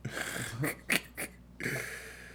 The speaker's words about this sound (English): I keep burping, dog. I'm over here sipping on this cup.